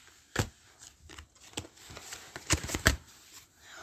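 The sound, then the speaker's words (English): A deck of cards being shuffled, a run of quick papery riffles and flicks in uneven bursts, with no voices over it. “No, I shuffled it.”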